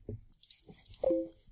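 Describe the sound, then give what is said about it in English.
A brief two-note Google Talk chat notification chimes once, a quick descending blip, moderately loud with faint background rustle and murmur. “No, you heard Google Talk chat through this one.”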